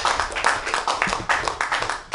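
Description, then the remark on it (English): Audience applause for all the comics at a comedy show: a steady wash of many hands clapping, dense and fairly loud, with quick overlapping claps and no voices on top. “Give all the comics a round of applause.”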